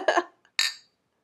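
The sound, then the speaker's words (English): Drinks, one a Boomtown Brewery Mexican-style lager, clink together in a toast: a dull knock of contact followed by a single bright, ringing glassy clink that fades quickly, with no talking. “Anyway, cheers. Cheers.”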